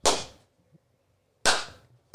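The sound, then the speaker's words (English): Three loud, sharp gloved hand claps by actor Ned Beatty with no talking, the first two spaced over a second apart with brief ringing tails, the third coming quickly after and cut short. “And then you see Ned Beatty, his dad, doing like the gloved clap.”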